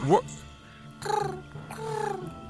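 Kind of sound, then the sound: vocal imitation, voice imitating pigeon cooing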